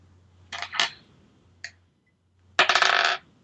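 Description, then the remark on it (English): Dice rattle and clatter in short bursts: two quick rattles, a single faint click, then a louder, longer run of rapid tumbling clicks before stopping, as dice are rolled for a DC 12 strength saving throw in a game; the roll comes to 7. No one speaks. “So he has to roll a 12 or higher with his minus one strength modifier.”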